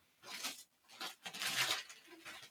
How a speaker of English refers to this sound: ripping up some Christmas paper she's found